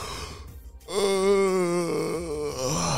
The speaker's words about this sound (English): she yawned and stretched,